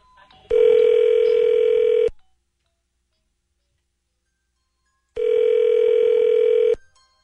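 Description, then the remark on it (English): A telephone call being connected through to a guest's room at a hotel: two long, steady, buzzy ringback tones, each about a second and a half, separated by a few seconds of silence, with no talking. “Can you just, can you connect me to his room?”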